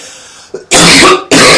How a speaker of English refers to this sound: If that was unclear from the coughing from his ganja, that is... La ganja estranja, although it's not really strange. Although, actually, it's shake, so it is strange.